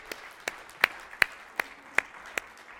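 Steady, evenly spaced hand claps, about seven sharp strikes in under three seconds, ringing out fairly close over a faint, hushed room background with no talking.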